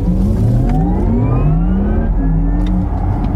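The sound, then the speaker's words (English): A petrol car engine revs up loudly, its pitch climbing through gear changes, with a faint high electric-motor whine running thinly above it, no voices. “The UK government has imposed a ban on the sales of internal combustion engines, which means no more diesel and no more petrol.”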